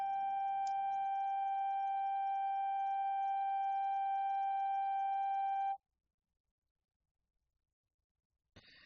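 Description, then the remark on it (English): A steady, unwavering electronic sine wave tone hums loudly and evenly for several seconds, then cuts off abruptly into silence before a brief burst of another sound at the very end. “The room turned white too, and the ball then blended with the color of the room, and the sound that accompanied these events turned into a steady sine wave, something like Ajahn Sumedho's sound of silence.”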